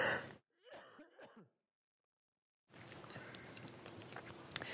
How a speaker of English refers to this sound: I just need to have a cough.